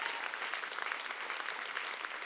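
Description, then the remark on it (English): An audience claps its hands in steady, dense applause, many hands at once, with no voices standing out. “Come on, we ought to clap our hands and say a good amen.”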